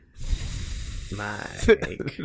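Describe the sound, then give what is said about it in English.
A voice imitates a snake's hiss for a comedy skit character, a drawn-out breathy sibilant sound that slides into a short voiced tone before trailing off, fairly loud. “he did the gay snake.”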